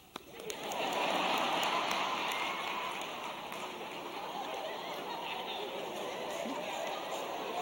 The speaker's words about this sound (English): How many of you think God's going to pour his blessing here? Clap your hands.